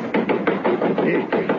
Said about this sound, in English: Then, one night, one wild night, twas apparently, Sir Dominic did come back. There came a rapping on the window, and old Connor Hanlon, the butler, my grandfather, was sitting by the fire, warming his shinnings worse.